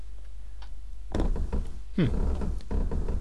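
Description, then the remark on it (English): Wooden floorboards creak and groan a few times at irregular intervals at the start of a music track, with one drawn-out, bending creak in the middle and soft knocking thuds, against a quiet low hum. “track starting off really weird with some creaking floorboards.”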